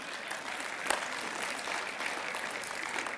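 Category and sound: crowd, scattered audience clapping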